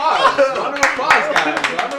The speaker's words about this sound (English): Round of applause, guys.